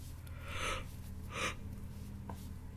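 yawn

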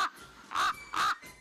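raven cawing

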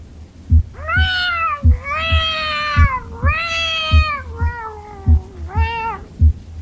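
cat meowing

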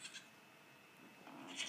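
goats bleating

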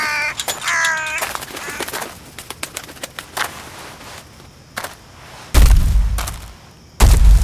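crow cawing

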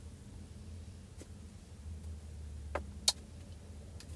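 car interior engine hum

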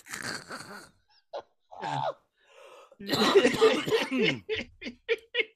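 coughing

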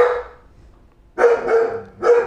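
dog barking

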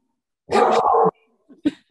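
dog barking

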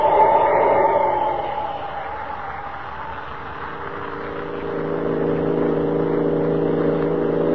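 car engine driving

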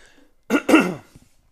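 coughing

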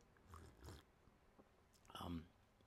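sipping and swallowing water

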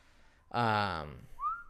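whistling melody

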